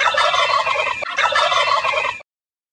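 A wild turkey gobbles loudly in two rapid, rattling bursts with a brief break between them, then goes silent. No one speaks.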